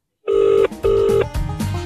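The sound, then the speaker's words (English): A phone line ringing tone from an outgoing call sounds twice in steady, loud bursts, with a brief gap between rings; no one speaks over it. “We're going to ring him. Let's do it. Let's see if we can get some words out of Wayne. Wing, wing. It's ringing.”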